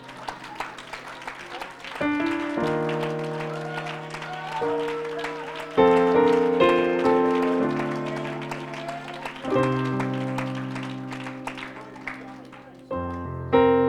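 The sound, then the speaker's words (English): A church audience claps steadily in praise of the Lord, a dense, sustained burst while organ chords swell and shift every few seconds underneath, with some voices mixed into the applause. “Why don't we just give the Lord a hand clap of praise right now?”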